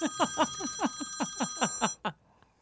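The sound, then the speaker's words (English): A phone rings with a rapid, bright electronic trill, about ten quick pulses over two seconds, ending with a short final burst before cutting off. No one speaks. “What was that ring?”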